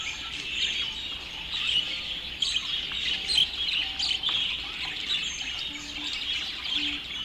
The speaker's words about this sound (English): I performed with 8 prize-winning canaries. They were all in this special cage, and they came on stage, and that was pretty interesting because it wasn't like one bird. It was like a whole bird ensemble in a box. They were making so many weird sounds.